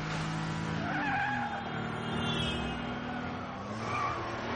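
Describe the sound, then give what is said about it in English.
A car engine roars at high speed while tires skid and squeal, with shifting whining tones over a steady, loud rumble lasting several seconds. No one speaks. “If she's actually going 80 in those wet conditions, she totally would have spun out there.”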